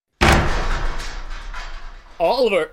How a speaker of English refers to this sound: Sorry I had to bust the door